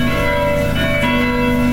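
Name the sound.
church bells ringing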